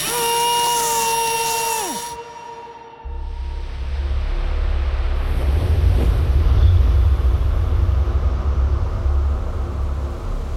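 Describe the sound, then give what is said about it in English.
A twin-engine motorboat's engine rumbles low and steady as it cruises smoothly down a river towards Miami under heavy clouds, with a broad wash of water and wind noise, following a brief whining mechanical tone that winds down. “A twin-engine motorboat makes its way smoothly down the river towards Miami”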